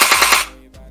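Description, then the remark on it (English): A toy gun fires a quick, loud burst of about four harsh, hissing pops in half a second, followed by quiet and one faint click. “I was going to bring it tonight and spray you guys down with it, but I forgot it.”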